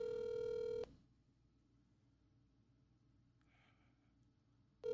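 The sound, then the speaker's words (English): A phone call being placed to someone's mom rings out over the line: a steady electronic ringback tone sounds for almost a second, falls silent through a long pause, then starts again at the end. No one speaks. “We've talked to brothers, we've talked about dads and great grandpas, and now we're trying to get a mom on the phone.”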